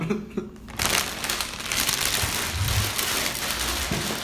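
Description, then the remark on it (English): Loud, dense crunching and crinkling of Lay's barbecue potato chips being chewed, a continuous crackly texture that starts after a brief quiet moment and keeps going without pause. “That crunchy here is Lay's barbecue potato chip.”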